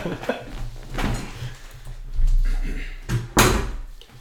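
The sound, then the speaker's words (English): A door is pushed shut: a soft knock first, then a firmer, louder thud as it closes, with faint voices and shuffling movement in the background. “Can you shut the door”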